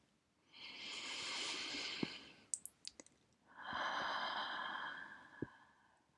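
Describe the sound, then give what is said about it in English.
A slow, deep breath in followed by a long, airy breath out, fairly soft, one of three deep breaths taken to close a breathing practice, with a few small mouth clicks in the pause between them. No talking. “We will now take 3 deep breaths to anchor your practice and to close our time together.”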